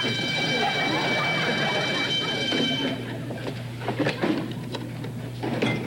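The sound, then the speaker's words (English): A loud burglar alarm at Snavely Manor rings with a steady, shrill electronic tone for about three seconds during a check of the security system, then cuts off abruptly, leaving a few scattered clattering knocks in the background. “What was that? Oh, the burglar alarm, Mr.”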